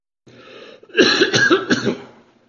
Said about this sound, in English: Forgive my voice and my cough.